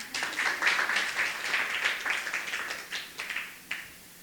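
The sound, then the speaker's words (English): An audience breaks into applause, a dense crackle of many hands clapping that holds steady for a few seconds, then thins into scattered claps before fading out. “You can clap.”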